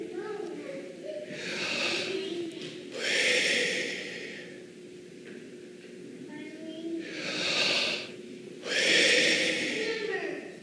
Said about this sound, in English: Many have noticed over, you know, the course of time that the sound of life, what do you mean by that? The sound of people breathing.